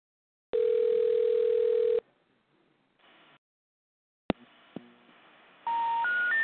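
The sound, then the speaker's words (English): A steady landline telephone dial tone hums for about a second and a half, then a receiver clicks and keypad tones beep in quick succession before a brighter rising tone sequence begins, no voices present. “You must first dial a 1 when calling this number.”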